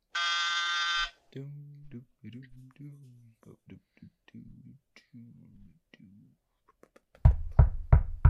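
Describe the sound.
A harsh, loud electronic apartment door entry buzzer sounds for about a second, followed by low-pitched speech, and then a series of four or five heavy knocks on the door at the end.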